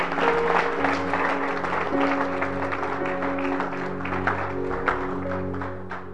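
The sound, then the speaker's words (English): An audience in a church claps steadily for several seconds, a dense, even patter of many hands that holds its loudness throughout, with a faint low hum running underneath. “Clap your hands for the English teacher.”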